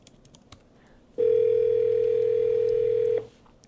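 Faint clicks and taps, then one loud, steady telephone ringback tone that holds for about two seconds before cutting off, heard on an outgoing call to a scammer.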